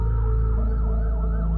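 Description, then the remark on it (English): An ambulance siren wails loudly, its rising and falling pitch sweeping steadily over a low rumble of engine noise. “Suddenly, his parents, they showed up. Ambulance.”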